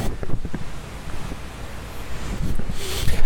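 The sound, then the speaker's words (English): Outdoor ambience beside a canal, a little artificial river in south central Osaka: steady wind buffeting the microphone, a low rumble of water and traffic, and a brief higher hiss swelling near the end, with no one speaking. “Well, I'm talking to you from the same location next to the canal.”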